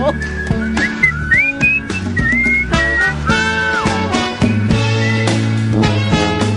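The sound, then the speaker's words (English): A whistled melody with bending, sliding notes rides over a busy band backing of bass and percussion, loud and continuous, with short phrases separated by brief gaps. “I mean, the whistling is absolutely shocking.”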